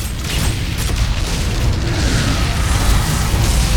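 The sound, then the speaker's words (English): Explosions and fire thrown by an enemy in a video game roar continuously, a dense wall of deep rumbling booms and crackling bursts that stays loud throughout, with no voices. “He's throwing all kinds of explosions and fire all over the place.”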